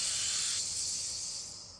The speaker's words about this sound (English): I just want you to relax. I want you to forget about that. I just want you to take a big breath in. So breathe in.